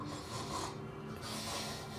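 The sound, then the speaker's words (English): A voice imitates snoring behind a door, as if from one sleeping person: two raspy, breathy snores, one after the other, steady and fairly soft, with no words spoken. “You hear a little bit of snoring behind the door.”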